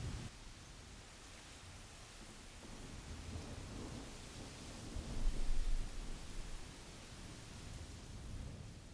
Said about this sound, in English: Lightning crashes one more time as you guys watch the rain continue to fall.